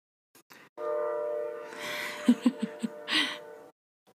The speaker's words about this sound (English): Sorry, everyone, for the train noises in the background. If you can hear it, you may not be able to hear it.